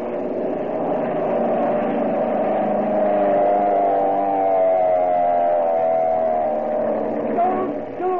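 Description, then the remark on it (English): A steady engine drone runs through the whole stretch, its harmonic hum holding loud and even, with a slight rise and fall in pitch, like a car motoring along. No one speaks. “I see a car.”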